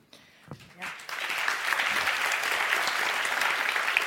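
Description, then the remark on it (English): Applause from an audience starts with a few scattered claps, then swells after about a second into steady, dense clapping that holds at a fairly loud level until the end. “I mean, I'm glad that got some applause because this is actually a really, really big deal.”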